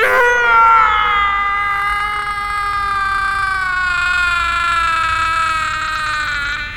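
A man's long, agonized dying scream, loud and close, holding one strained pitch that slowly sags lower over several seconds without a break.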